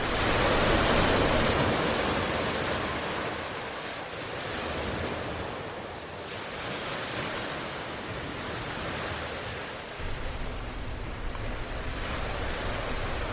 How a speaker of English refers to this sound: Listen to the rhythm of the waves flow over the sand and let it relax you.